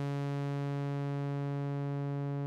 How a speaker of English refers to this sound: And if I turn them all the way up, here's the full. So here you're getting like an LFO. Nice long sine wave LFO.